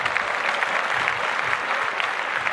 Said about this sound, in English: Bill Cosby's a free man. Yeah, clap that up.